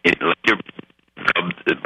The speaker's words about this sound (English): we're having a lot of trouble with your phone line.